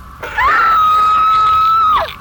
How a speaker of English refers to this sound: That's when I heard her scream.